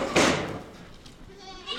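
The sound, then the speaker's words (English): A sharp clatter opens the short moment, followed by the wavering, nasal bleats of recently weaned baby goats in a barn, bred in the hope that they carry a gene for producing silk. “Across the barn stand some recently weaned baby goats, and early evidence is that the breeding has worked.”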